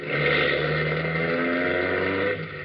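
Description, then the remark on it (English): A car engine hums steadily, a low droning idle with harmonic tones, holding level for a couple of seconds before easing slightly near the end. No one speaks. “I turned the collar of my overcoat up, kept my face away from him as I bundled him into the car, the back seat, of course, hoping he wouldn't spot me until I got him away from there, alone.”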